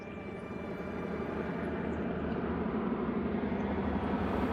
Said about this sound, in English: Returning from a short trip, the Magician circles Airport Moderny. Jane subconsciously notices a strange plane in the distance, but thinks nothing of it.